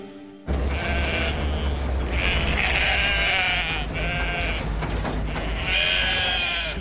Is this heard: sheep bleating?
yes